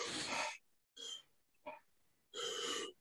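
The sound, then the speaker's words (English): Deep, forceful two-part breaths, fully in and fully out, as in intense breathwork practice: several loud airy bursts separated by short pauses, with no talking. “Like, so for example, we have a two-part breath, which is just fully in and fully out.”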